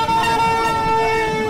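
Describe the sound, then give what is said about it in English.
A loud, sustained car horn blares steadily, layered with other honking horns from cars in a slow election rally procession, a continuous wall of tooting traffic noise, unbroken for the whole moment. “At first, I didn't know what the hell was happening, but it turns out it was an election rally. And I was just really blown away that this continued, this procession, for like 15 minutes.”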